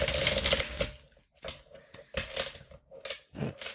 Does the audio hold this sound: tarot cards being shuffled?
yes